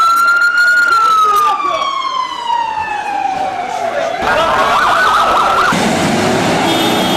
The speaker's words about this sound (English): Now I hear the ambulances running.